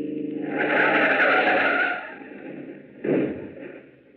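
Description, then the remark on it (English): A car's tires skid and squeal loudly for about two seconds as it is run off a long, empty stretch of road into a ditch, followed by a rough scraping rumble and a sudden jolt as the vehicle lurches off the road. “Step on it now. Run her off the road. Now, run her off in that ditch.”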